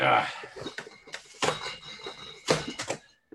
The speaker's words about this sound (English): Like, look, I was trying to get my beer out and then it was just stuck in the door. So now I gotta open the whole case. Hang on.